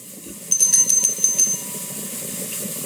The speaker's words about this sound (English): Eclipse will ring the doorbell. Okay, Eclipse rings the doorbell. Right, that's what that is.